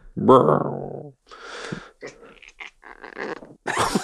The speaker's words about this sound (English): Well, is the cat growling at you? Mm-hmm. Just record that.